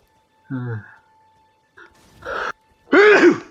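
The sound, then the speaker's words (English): A single sneeze with a short voiced wind-up before the noisy burst, followed by a brief vocal sound. “Bless you.”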